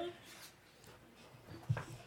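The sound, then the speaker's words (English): Dogs whimper and whine faintly in the background, a thin high-pitched cry with a brief louder yelp near the end, all under quiet, low-level noise and talk. “And the damn dogs are half the reason why we're going to have to make me edit or not edit.”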